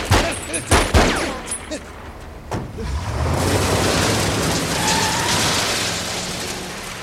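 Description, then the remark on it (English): A quick burst of gunshots, several sharp loud cracks in the first second and one more shortly after, followed by a car engine revving and roaring steadily. “As soon as I turn, you're gonna shoot me.”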